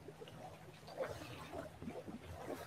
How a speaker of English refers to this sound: You can see I'm at an incredible location. Wave runners slipping by, boats, sound of the waves. True connection to nature with the occasional boat passing by.